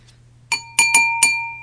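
A glass with no wine in it is tapped four times in an uneven rhythm, each bright clink ringing with a clear sustained tone, fairly loud over a faint low hum.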